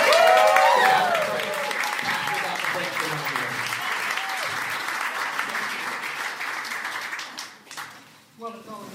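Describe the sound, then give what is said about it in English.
A large audience at a church conference gives a sustained, loud standing ovation to honor a speaker, dense clapping with a few voices calling out early on, before it tapers off and thins out near the end. “Will you just stand at your feet as we give him a round of applause?”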